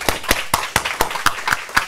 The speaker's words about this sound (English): can we give them a clap, please?